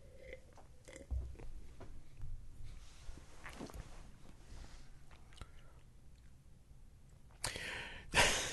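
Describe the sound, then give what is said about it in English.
Quiet mouth sounds of someone sipping a 9% pale ale beer: soft wet slurps and small clicks, then a louder breathy burst near the end, like an exhale or a glass being set down. “Let's give it a sip.”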